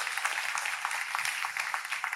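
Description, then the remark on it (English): An audience claps for two people as they go down from the front after a prayer, a dense, steady patter of many overlapping hand claps that holds an even loudness throughout, with no voices rising above it. “Clap for them as they go down there”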